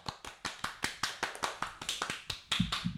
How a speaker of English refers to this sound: My dad is actually the one that told me about that, and so he should also get a round of applause.